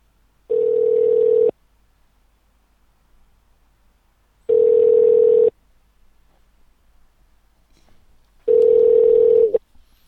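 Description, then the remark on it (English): A phone line rings out three times while the call is put through to the operator, each a steady one-second tone followed by a few seconds of quiet, heard from the caller's end with no one answering or speaking. “Ringing the operator.”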